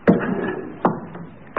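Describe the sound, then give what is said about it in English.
A chair being shifted into place: three solid knocks against the floor, roughly evenly spaced, with a low scraping rumble carrying between them and no voices. “Pass me that chair, would you?”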